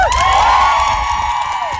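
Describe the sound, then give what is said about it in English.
A crowd of women cheers loudly, applauding a trans activist speaker, with high whoops and shouts rising over a steady wash of applause for a couple of seconds; no clear speech comes through. “Now, again, this is a guy lecturing women, and they're applauding him.”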